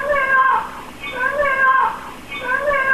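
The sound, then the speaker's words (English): A 40-year-old parrot named Rambo at a home in Lake Worth, Florida, cries out "Let me out" in a voice imitating a person's plea, with three drawn-out, wavering, high-pitched wails repeating steadily, loud and clear with no other talk. “Turns out those were not cries for help. It was the sound of a 40-year-old parrot named Rambo.”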